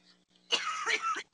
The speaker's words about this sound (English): I don't know whose cough that was.